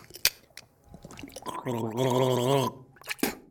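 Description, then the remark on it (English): Loud gargling of mouthwash: a voiced, bubbling gurgle held for about a second, framed by a few wet clicks and a short splash before and after. “When I'm sad, I need a good gargle. Mouthwash.”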